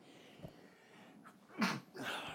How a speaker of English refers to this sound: Excuse me. Sneezed.